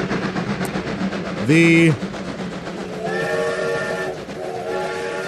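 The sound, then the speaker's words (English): The whistle of the TJA Express, a steam-powered monorail, gives a short, loud blast, followed by the steady rumble and clatter of the rolling train, with further whistle tones sounding over the churning noise. “It's the world's only steam-powered monorail, of course.”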